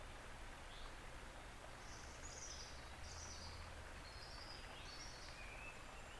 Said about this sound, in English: The birds. The kingfisher.